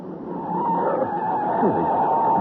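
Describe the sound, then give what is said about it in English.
A car races along with a loud, continuous engine roar and a brief tire screech partway through, its brakes and handbrake failing to hold as it goes too fast to stop. “Brakes aren't holding right.”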